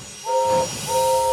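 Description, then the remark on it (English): A steam train whistle sounds two blasts, each a steady two-note chord, the second following after a short gap, over a low rumbling background with no talking. “Gordon wheezed his steam loudly.”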